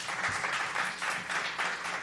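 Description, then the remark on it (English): An audience at a live music show applauds a performer, a dense wash of many hands clapping with slight swells and no clear individual claps, sustained at a moderate level for the full two seconds with no one speaking. “Give him a nice round of applause and thank him for driving all the way out here tonight.”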